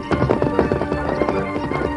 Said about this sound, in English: The Lone Ranger held the great horse Silver to a fast pace. He traveled steadily through the moonlit night, pausing only twice to give the mighty stallion a brief rest.